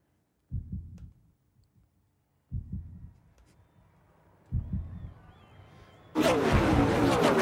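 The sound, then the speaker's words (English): Three deep, booming heartbeat thumps in a trailer for a car-racing film land about two seconds apart, each fading into a low rumble, before a loud roaring rush of engine-like noise bursts in and fills the end. “Heartbeat in the background.”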